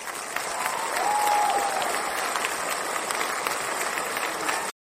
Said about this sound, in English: I'm just going to give you a little round of applause because everybody knows how much I'd love to celebrate a good founder journey story.